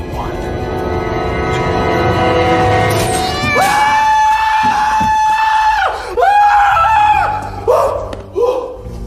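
A man lets out a loud, sustained scream of fright that wavers and breaks into several shorter panicked yells, cutting through a rumbling, noisy background.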